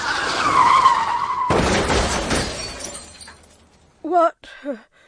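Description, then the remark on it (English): A car's tires squeal in a long, loud skid, then slam into a police car parked in the middle of the street with a sharp crash and shattering glass that rattles away, followed by a brief voice. “You hit a police car.”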